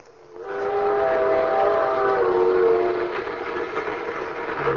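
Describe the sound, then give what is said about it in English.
A ski train's whistle sounds a long, steady multi-tone blast over the continuous rumble of the train running on the tracks, loud, then the rumbling carries on alone. “Ski trains.”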